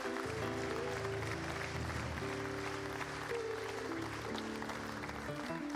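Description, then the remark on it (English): An audience gives a hand clap of praise to God, clapping steadily and loudly for nearly six seconds, a dense, continuous wash of hand claps over sustained low instrumental chords that shift partway through. “Come on and give him a hand clap of praise in this house today.”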